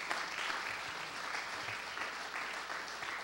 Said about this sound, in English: Someone give the Lord a great big hand clap.